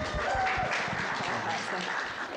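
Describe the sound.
An audience at a tech event in Brighton claps in a steady round of applause as a speaker is called up to say a few words, a dense, even patter of many hands that stays loud for a couple of seconds, with a faint murmur of voices mixed in.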